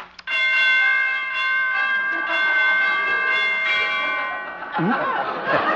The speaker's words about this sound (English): Door chimes need tuning.